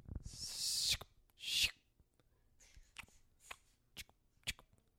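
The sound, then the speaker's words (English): Wrapping a Christmas present: two long crinkly rustles of wrapping paper being pulled and folded, then a short series of sharp, crisp snips and clicks spaced about half a second apart, with no talking. “Snip, snip, zip, zip, zip. Scrap, scrap.”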